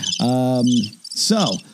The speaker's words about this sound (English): Hi, crickets. Bye, crickets.